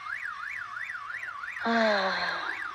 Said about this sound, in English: I hate car alarms, and it's so windy.